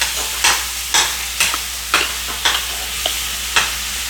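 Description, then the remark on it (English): Chicken sizzles in a hot pan with a steady, bright crackling hiss, broken by about eight sharp scraping strokes at a regular rhythm as it is stirred. No one speaks. “Mine is very hot. I'm going to put in the chicken.”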